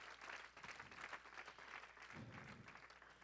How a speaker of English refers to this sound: Well, it'd be a good time to clap your hands to the Lord today. Praise the Lord.